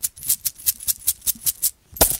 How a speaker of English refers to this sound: Alrighty, and we put it in the gumball machine. Yes, indeedy.